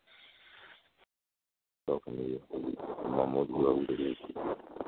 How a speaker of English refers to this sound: I think that dude snoring left on speaker.